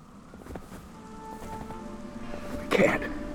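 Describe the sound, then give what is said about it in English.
Steady rain and hail clatter down in a rough, gusting bitter wind in the wilds near a refuge, with a louder, harsher burst of pelting near the end and a faint tonal hum underneath. “In the wilds near the refuge, a bitter wind picks up as the sky unleashes rain and hail.”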